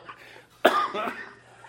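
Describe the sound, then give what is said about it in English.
A couple of harsh coughs brought on by laughing, in quick succession, the first sharp and loud, the second rougher and slightly drawn out, with no talking. “Now I'm coughing.”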